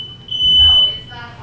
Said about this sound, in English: Looks like we got a fire drill.